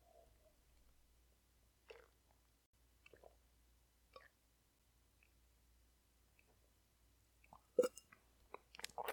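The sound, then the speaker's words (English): Someone drinks the last of a blueberry cream ale from a can or bottle, with a few soft, spaced swallows and wet mouth clicks, then a quick burst of louder gulps and slurps at the end. No one speaks. “I think I'm going to finish it right here. I only got a sip.”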